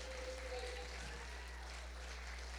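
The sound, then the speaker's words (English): An audience gives a hand clap of praise, many hands blending into continuous applause over a low, steady hum, with no voices standing out. “Go ahead, give him a good hand clap of praise.”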